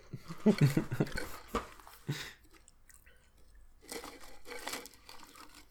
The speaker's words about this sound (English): It sounds like it's coming out of a tin or a can or something. And it did sound awfully crunchy. Just because of the can alone, I'm actually thinking that these might be Pringles.